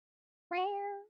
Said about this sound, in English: This is my cat asking to be let in. He's super vocal.